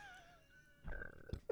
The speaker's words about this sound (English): I just burped. My stomach is revolting.